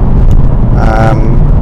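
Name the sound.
car interior driving noise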